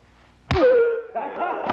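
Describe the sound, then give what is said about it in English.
After a brief hush, one sharp smack of a punch to the ribs lands loudly, followed by a strained, ringing tone that trails off, then a softer rustle and bump near the end. “And he punches him in his ribs.”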